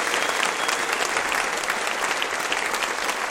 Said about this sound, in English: Okay, ladies and gentlemen, massive round of applause,